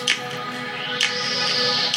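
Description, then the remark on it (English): Three sharp hand claps, spaced about a second apart, ring out over a steady humming, tonal background. No one speaks. “Keep clapping.”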